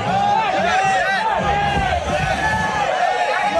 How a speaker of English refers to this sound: New Yorkers who booed and criticized and yelled at Ted Cruz to get the fuck out of their stadium